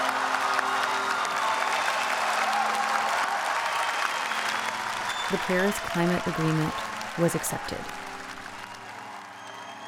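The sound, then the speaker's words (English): Loud, sustained applause from a large crowd on its feet fills the room at the Paris climate conference as the Paris climate agreement is accepted, a dense wash of clapping with some cheering, while a man's voice speaks briefly over it near the end. “Well, we are all on our feet, you know, clapping and like crazy, because it was a huge achievement.”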